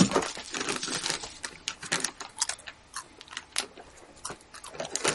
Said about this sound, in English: He says, being unable to open the bag of dice. That feeling is too horribly familiar.